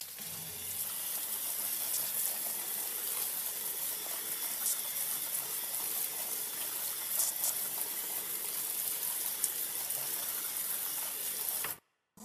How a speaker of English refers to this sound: And like I said, as that water's draining through here into that tray below, it's going to catch it all and just hold it there and then wick it back up into that soil medium as is needed while these seeds are germinating.